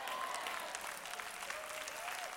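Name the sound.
audience applauding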